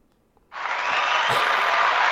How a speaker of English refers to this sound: First off, Randy Orton needs applause.